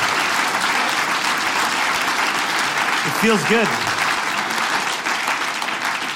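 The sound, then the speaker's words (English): A large audience applauds steadily for several seconds, a dense, continuous roar of clapping, while a man briefly speaks over it near the middle; the audience is clapping for themselves at a show. “Clap for yourselves.”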